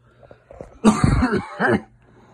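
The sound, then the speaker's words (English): A harsh, raspy cough bursts out after a fist strike lands in the throat, followed by a shorter second hack, with faint quiet breathing before it and silence after. “The king prepares for a fist strike, which lands Ock directly in the throat, who then coughs in arrogance.”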